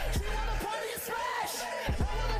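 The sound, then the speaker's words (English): Loud, sustained shouting with a hollow, echoing ring, voices rising and wavering in pitch over a steady roar, broken by a few heavy low thuds. “Just shouting with an echo, kind of.”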